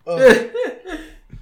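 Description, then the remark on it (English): A loud burst of hard laughter breaking into a few rough, voiced coughs, three short bursts trailing off over about a second and a half. “I laughed so hard I started coughing.”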